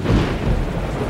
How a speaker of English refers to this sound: The opening shot is in a like a candle-lit room with a storm raging outside the window,